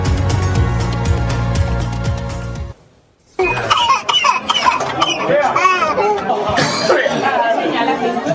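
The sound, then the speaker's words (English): Passengers on a New York City subway train cough and hack from smoke after two cars derailed near a station in Harlem, amid overlapping, agitated voices, following a brief sustained musical tone and a short pause. “Passengers on a New York subway train cough and hack from smoke after two cars derailed near a station in Harlem, scraping the side of the tunnel wall.”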